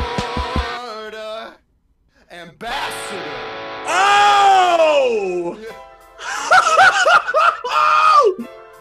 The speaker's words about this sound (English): Oh, the screaming